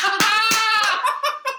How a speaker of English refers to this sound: Oh, I'm literally... so much clapping is happening.